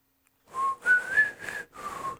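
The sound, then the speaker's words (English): A person whistles an imitation of the chirpy birds in the Hunger Games: four breathy, warbling phrases of fairly high notes that rise and dip slightly, with brief gaps between them and no talking. “Other than the chirpy bird things.”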